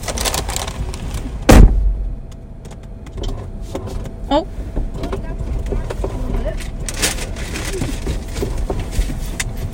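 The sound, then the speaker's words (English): Inside an idling car, a sharp thump is followed by the brief whirring strain of a power window motor as someone tries to fix the window by pushing it up, with soft background rumble. “We're gonna try to fix the window.”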